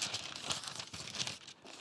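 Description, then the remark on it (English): Thin Bible paper pages crinkle and rustle steadily, a dense, crisp crackling with quick bursts of brighter crinkles throughout, no voices. “Just got a little more crinkle to it.”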